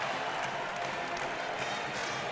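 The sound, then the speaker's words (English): A packed arena crowd on its feet roars and cheers steadily as the CSU Rams come onto the court, a dense wash of voices and clapping that stays loud and sustained with no pauses. “The Rams have just made it onto the court, as you can hear, and the crowd is on their feet.”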